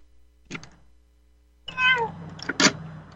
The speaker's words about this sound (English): Yes. A kitty cat. Wow.